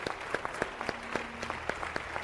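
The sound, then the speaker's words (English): An audience in a church sanctuary applauds the junior ushers, a dense spread of sharp hand claps ringing at steady moderate volume, with no voices over it. “Let's give them a round of applause and just show them how much we appreciate them.”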